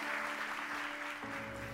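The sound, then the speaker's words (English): A Valley Point Church audience applauds three people in a steady, continuous wash of clapping that holds an even loudness throughout, with faint sustained tones humming beneath it. “Can you give these three folks a nice round of applause?”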